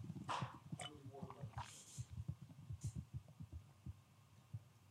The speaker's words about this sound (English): Man, I hope nobody don't judge me. I drank that like a little thirsty kid and damn, that felt good.